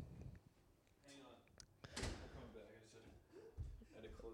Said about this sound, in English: I got to close this door. Hang on.